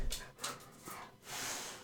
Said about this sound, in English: I just heard the pitter-patter of dog feet.